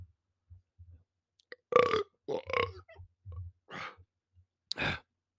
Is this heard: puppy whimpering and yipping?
no